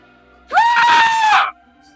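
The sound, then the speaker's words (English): A single loud, ear-piercing creature shriek lasting about a second, shrill and steady in pitch, heard alone with no talking around it. “And then there is this loud, there's going to be this loud sound that the shrieking ear piercing.”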